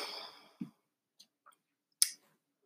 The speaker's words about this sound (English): Actually, let's take a little break. I hear my dog moving around, and then we will talk about the results.